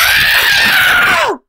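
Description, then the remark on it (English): A person imitates a baby's scream during a circumcision: one loud, shrill, sustained wail held for over a second, then sliding downward in pitch before cutting off abruptly. No talking. “Champ. Screamed. I was expecting something like this during go the ahead, moment.”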